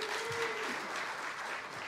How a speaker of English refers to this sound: How many of you can identify with any of those favorite foods? Will you clap?